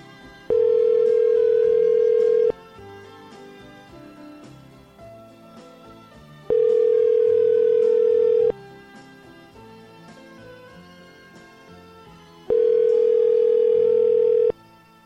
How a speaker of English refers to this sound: So I'm going to give dear old Zach a call right now. I understand he's in rural Ohio.